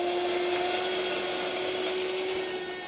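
A small electric spiralizer runs steadily as it cuts zucchini into noodles, a close, continuous motor whir with a few faint clicks, fading slightly toward the end.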